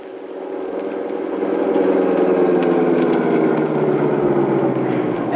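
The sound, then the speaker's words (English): A bus engine rumbles steadily, swelling in loudness as it revs and pulls away, its low drone holding for several seconds with no voices. “I just missed my bus.”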